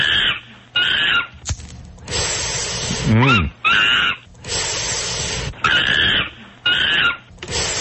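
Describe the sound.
A person imitates monkey noises: a rapid run of high, shrill hoots and squeals broken by breathy, hissing bursts and one warbling wavering cry, loud with no speech.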